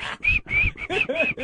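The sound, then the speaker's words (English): A person whistles a short tune right in someone's ear while they are trying to work, a string of sustained, fairly loud notes separated by brief breaks, with a few sliding pitch changes toward the end. “Stop whistling in my ear.”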